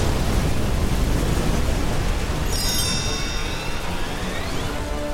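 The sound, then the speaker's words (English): A massive explosion, set off when the Infinity Stone's power consumes the Collector's servant, roars as a loud, sustained wall of rumbling noise with heavy low end, while high ringing tones sweep downward partway through. No one speaks. “Its power consumed her, setting off a massive explosion.”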